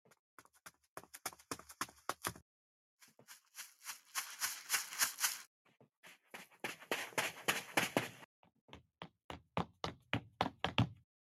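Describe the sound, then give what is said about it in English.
Rapid footstep sound effects from four different footstep sounds play in several bursts, some sharp and clicking like hard shoes, others softer and shuffling, with brief pauses between sequences. No one speaks over them. “I kind of hate that all those footstep sounds sound like they're coming from different directions.”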